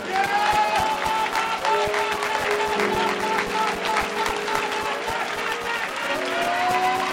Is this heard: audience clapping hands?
yes